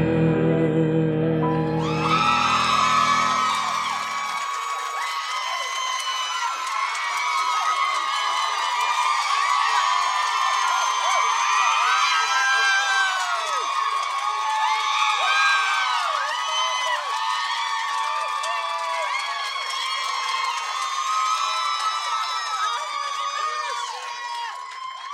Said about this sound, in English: Somebody was hooting. We love you back. Somebody was hooting from the side.